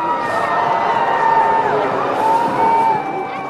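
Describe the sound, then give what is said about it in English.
A large crowd booing, a dense and steady wash of many voices holding drawn-out, moaning tones for several seconds, with scattered shouts rising through it. “Of course he gets booed.”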